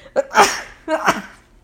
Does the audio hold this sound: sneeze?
yes